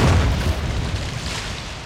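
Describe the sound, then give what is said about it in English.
A massive explosion of a torpedo striking the ocean liner Lusitania at sea, about half a mile away, booms out, heavy low-end energy hitting hard at the start and then rumbling on in a loud, dense roar that slowly fades without fully dying away. “Lusitania was about a half a mile away when all of a sudden, without warning, a massive explosion and boom changed the mood.”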